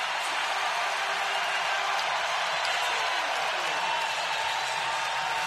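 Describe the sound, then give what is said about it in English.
A crowd at Oracle Arena roars during a Warriors–Raptors basketball game in the first quarter, after Steph Curry hits a step-back jumper. A dense, loud wash of cheering and shouting holds steady for several seconds, with no single voice standing out. “And you get a sense of what it's like in here. The wave of noise.”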